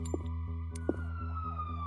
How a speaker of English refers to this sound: I heard sirens, and the siren sound just couldn't stop.